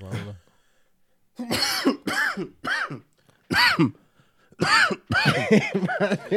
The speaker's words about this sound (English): My nigga, as we talk about the corona, this nigga cough all over the whole table, everything in front of everybody, all that shit. Nigga gave us a T virus just now.